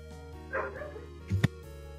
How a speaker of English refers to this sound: With a very angry dog. Yeah, dog's acting up about something. Not me this time.